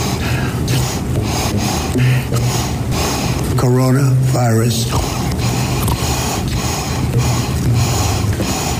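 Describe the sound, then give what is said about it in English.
Loud sniffs and heavy breaths from a supercut of Donald Trump's breathing follow one another in quick succession, with short voiced fragments cutting in near the middle, like a rapid string of snorts and gasps. “But I made like a super cut of all the Donald Trump weird breathing and him saying "Hit me, coronavirus."”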